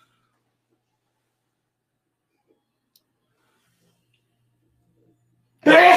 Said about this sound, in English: Bless you. Holy hell. That got me too.